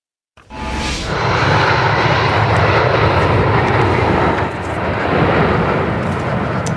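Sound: airplane engine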